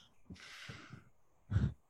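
A breathy sniff draws air in through the nose for about a second, followed by a short, louder nasal exhale or snort. No talking.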